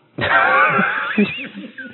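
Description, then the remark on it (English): A long, loud sniffing inhale lasting about a second as someone sniffs the contents of an envelope, raspy and breathy, followed by a few faint, soft vocal murmurs. “Okay, you sniff it, and I need you to make a con save.”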